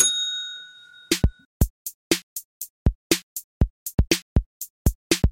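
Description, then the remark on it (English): A single bell rings out clearly and fades over about a second, then a rapid, steady run of sharp percussive beats follows. No one speaks. “Ring the bell, but crack on with the rest.”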